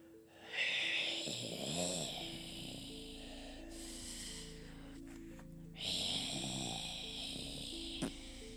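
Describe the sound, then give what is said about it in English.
Slow, deep, raspy breathing, with two long drawn breaths that rumble low like snoring and a hissing airflow in between, steady and unhurried with no talking. “And you hear this deep, low breathing.”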